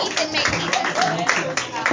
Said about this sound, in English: Wow. Clap it up for that man